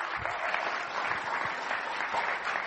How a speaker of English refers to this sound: He's travelled all the way from next door. Go on, give him a clap.